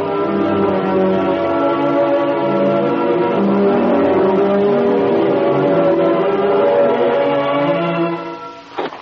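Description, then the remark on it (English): A car engine hums steadily and loudly as the vehicle drives along a road without its lights on, its low droning tone holding constant for several seconds before fading out briefly at the end. “Watch the side of the road, Cato. We're traveling without lights the rest of the way.”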